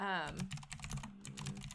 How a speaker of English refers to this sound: You can pardon my clicky keyboard. I have a mechanical keyboard. It is very okay. clicky.